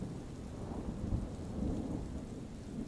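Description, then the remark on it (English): A steady thunderstorm: dense rain hisses continuously while low thunder rumbles and rolls underneath, swelling briefly in the middle. No voices, just the enveloping storm at a moderate, even level. “Enjoy these allegedly true scary bedtime stories with the serene sounds of a thunderstorm.”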